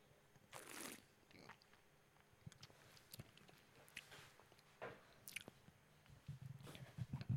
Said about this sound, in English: I'm going to go for a big sip.